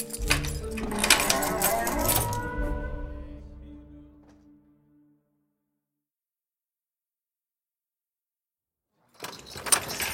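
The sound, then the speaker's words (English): A heavy iron door in a jail building grinds and clangs shut, its metallic ring fading over a few seconds into silence, before another clattering burst starts near the end, with footsteps in the dark, musty corridor. “Led me down the dark, musty corridor of the jail building and into a dank room behind an iron door.”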